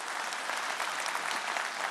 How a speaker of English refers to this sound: Amen. Yes, we can give the Lord a round of applause. Absolutely.